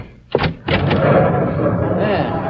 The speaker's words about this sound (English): An oil lamp clutched in her gnarled hand to answer the violent pounding on the outer door. Who's that? Who's out there?